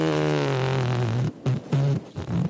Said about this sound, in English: And fart noises.